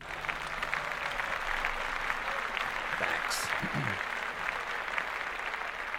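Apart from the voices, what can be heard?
clapping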